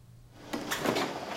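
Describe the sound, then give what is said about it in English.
A fridge door is pulled open and pushed shut, with a short clatter of rustling and a soft thud following a quiet moment. No one speaks. “The fridge door swings open and shut.”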